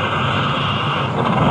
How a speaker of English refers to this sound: Well, here's my bus.